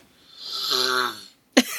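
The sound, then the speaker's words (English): A long, loud nasal snort with a rough, honking buzz as a person sniffs a drink, followed after a brief pause by a sharp, forceful burst of breath from the nose, with no talking. “But I will say, snorts hard. You and your damn honker, man.”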